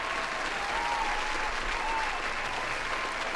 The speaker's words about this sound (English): And for that, I'm going to give y'all a round of applause.